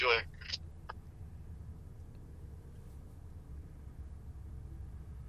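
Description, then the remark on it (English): A remote caller's audio on a call breaks into a brief, choppy burst of garbled sound and cuts off abruptly, leaving only a steady low rumble of line noise, like a call connection dropping out. “Lost you for a second. Lost them. Let's see if they come back.”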